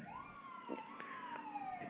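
Emergency vehicle sirens wail steadily as they pass outside in Manhattan, New York City, USA, the pitch gliding slowly, muffled and moderately faint, with no voices over it.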